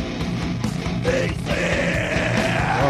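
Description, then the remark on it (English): A man screams continuously with his lips pressed into 2-inch cracks, recorded by a mic placed down there. The sound is muffled and boxy as if coming through a wall, holding loud and strained for the whole stretch with a rough, droning texture. “This is it. Screaming.”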